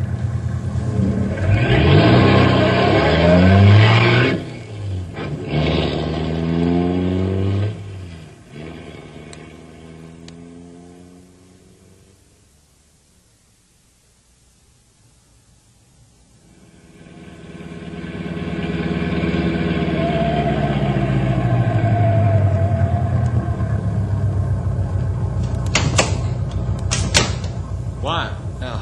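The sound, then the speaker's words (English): A truck engine revs hard during a chase down a bad road, its pitch climbing and dropping, then fades almost to silence before roaring back up and holding steady, with a few sharp clatters near the end. “We black and blue from chase down this bad road.”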